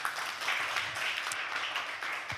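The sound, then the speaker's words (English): A crowd applauds steadily, many hands clapping in a dense, hissy wash that holds at an even, moderate level throughout with no voices over it, welcoming a panelist introduced at a panel discussion. “A big round of applause.”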